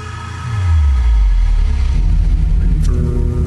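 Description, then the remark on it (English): A cinematic music score swells with a deep, rumbling bass drop beneath sustained tones, rising quickly and then holding at a full, steady volume. No one speaks. “This is where it starts to build up, though.”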